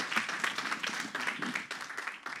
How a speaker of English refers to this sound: Awesome, guys. Let's clap it up.